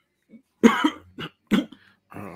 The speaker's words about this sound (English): Yeah, I'm trying not to cough, but it's like every once in a while, I'm just like...